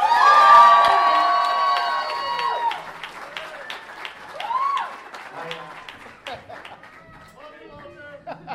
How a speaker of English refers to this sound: Y'all gotta give it up for my man from all that. I'm just saying, bring him in right now with a big round of applause, Kel Mitchell.